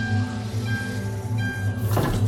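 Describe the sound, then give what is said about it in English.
A steady low rumble and hum of a moving East Midlands train service from London King's Cross to Edinburgh, heard from inside the carriage, with faint tonal whines and a brief hiss or clatter near the end. “Welcome aboard the East Midlands train service to Edinburgh.”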